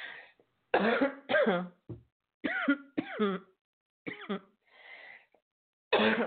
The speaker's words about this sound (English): Bless me, I'm going to cough again. Hold on.